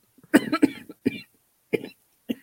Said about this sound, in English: There she goes with a cough. So I'm allergic to my dog. I'm gonna have a cough forever.